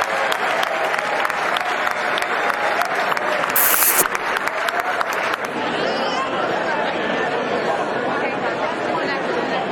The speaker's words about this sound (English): And then the even weirder part was at the beginning of Biden's speech, when acknowledging them, there was an awkwardly long applause for them, as if they were actually the president.